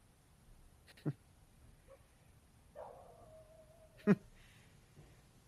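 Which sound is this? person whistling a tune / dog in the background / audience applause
dog in the background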